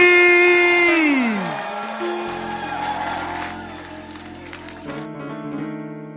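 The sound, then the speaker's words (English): A church audience at a Sunday service stands, claps and cheers steadily to welcome their pastor, Bishop Richard Ayi. The crowd noise blends beneath loud, sustained keyboard chords that open with a sliding, descending tone. “Then I want you to stand to your feet, clap your hands, and welcome our pastor, Bishop Richard Ayi.”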